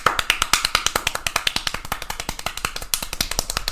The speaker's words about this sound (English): Can you hear me how fast I'm clapping